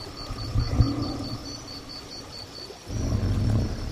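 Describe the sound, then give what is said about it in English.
A deep, rumbling growl from an adult male Tyrannosaurus rex, over 10 metres long and weighing more than 7 tonnes, rises twice, a short swell early on and then a longer, louder rumble, with steady insect chirping and flowing water by a river bank in what is now Wyoming, 66 million years ago, in early afternoon. “Crouched next to us is one of the largest, deadliest creatures ever to walk the earth. Tyrannosaurus rex.”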